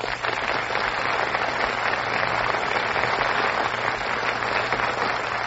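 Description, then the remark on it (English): A large studio audience bursts into sustained, steady applause for the stars just appearing on stage for a radio play of Alice Adams, dense and loud throughout, with a faint low hum beneath and no voices. “That burst of applause, ladies and gentlemen, is for our stars who have just appeared on stage.”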